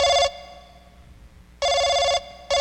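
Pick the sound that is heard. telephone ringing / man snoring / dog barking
telephone ringing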